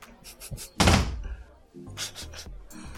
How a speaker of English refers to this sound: What door did he just go through? He went into the closet. That was weird. That was very odd.